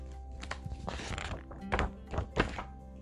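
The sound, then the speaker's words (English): Two goats locking horns: a run of hollow, solid knocks and thuds in an irregular cluster, the last few hardest and loudest, with no voices over them. “the two began to lock horns.”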